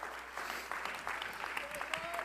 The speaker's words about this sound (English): Come on, clap your hands unto the Lord right now.